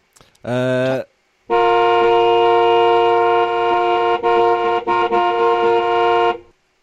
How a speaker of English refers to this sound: Hypocrisy klaxon. It's more like a car horn, really, wasn't it? No, but I quite like that.